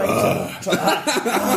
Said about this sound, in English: She's just burping. She's just gassy.